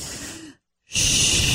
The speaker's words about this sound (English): so that they can mimic that you're inhaling and exhaling.